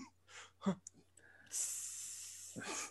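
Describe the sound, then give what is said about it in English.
A voice imitates French toast made with brioche bread sizzling in a pan: a few short breathy bursts, then a sustained, bright, high hiss lasting about a second before a final breathy puff. “That's why you have to make the sizzle sound. That was the sizzle.”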